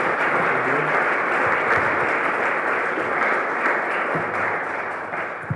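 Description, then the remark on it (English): An audience claps steadily for several seconds for a panel, a dense, even wash of applause that holds its loudness before easing slightly at the end. “So we'll go to Q&A, but let's give this panel a round of applause for being here and sharing the information.”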